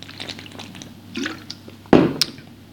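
Soft liquid sounds: small wet clicks and slurps, then a louder gulping swallow near the end, as someone takes a sip of water. No one speaks.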